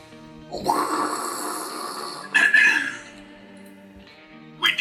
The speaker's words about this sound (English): Sound effect. That's not Reptar, that's Godzilla. Reptar can blow fire.